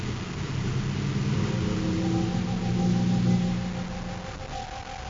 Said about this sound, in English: The surface car, designed for rough terrain, moves easily across the desert, through rocky arroyos and deep sand.